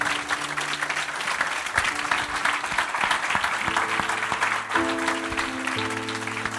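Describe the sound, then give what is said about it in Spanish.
A crowd applauds God steadily for several seconds, a dense unbroken wash of clapping, while sustained keyboard chords hold and shift softly underneath. “¿Por qué no le da un aplauso a nuestro Dios?”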